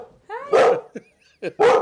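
A dog barks twice, loud, with a brief rising whine before the first bark and a couple of small yips in between.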